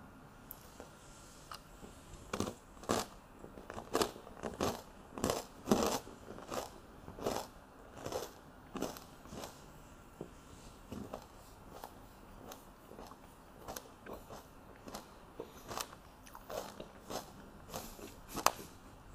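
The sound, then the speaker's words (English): Wet, crunchy biting and chewing of a tomato, a steady run of sharp, juicy crunches at an uneven rhythm that continue throughout, with no talking. “the burst of tomato flavor is one of the great simple things in life.”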